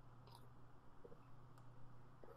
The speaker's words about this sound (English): Wow. Big gulps. Yeah, I don't sip.